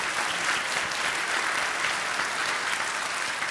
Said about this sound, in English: And so, you can clap for them.